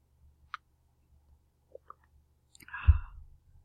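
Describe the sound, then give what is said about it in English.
A few faint clicks, like a cup being handled, then a short slurping sip of hot green tea with honey, with no one speaking. “Oh, yeah, I'm just, sorry, rattling on, but I think I'll sip my tea now.”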